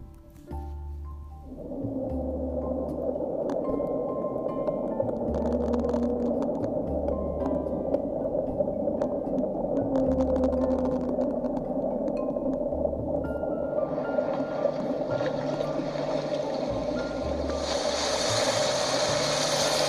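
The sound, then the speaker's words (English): A huge sea creature crashing onto a pirate ship, heard as a deep, sustained groaning rumble with heavy pulsing low thuds beneath it, and a rising wash of hissing noise toward the end. No one speaks. “And in disbelief, they couldn't believe this, a big sea creature just landed right on top of the pirate ship, and he knocked the pirates off.”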